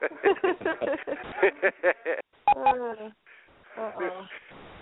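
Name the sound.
beep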